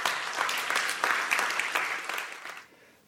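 A crowd claps steadily in a dense wash of many hands, holding strong for over two seconds before tapering off and fading out near the end.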